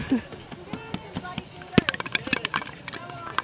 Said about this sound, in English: The sound of clattering bones clattering to the floor.